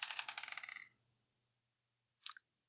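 Two dice are rolled, clattering and rattling across a hard surface in a quick burst of bright clicks and landing on one and one, then silence, followed by a short final clack a moment later. No one speaks.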